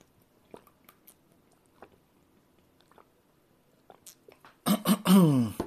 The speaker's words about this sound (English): I'm gonna take a drink of water again.